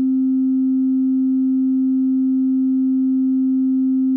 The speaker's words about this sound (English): So there's our nice sine wave.